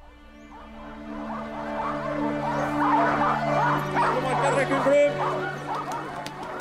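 A pack of sled dogs at a long sled race in a small frozen town in rural Norway, with sleds pulled by 12 dogs, barks and yips in an excited, overlapping chorus that carries on steadily throughout, mixed over a sustained low musical drone.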